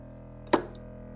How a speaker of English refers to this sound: Splash.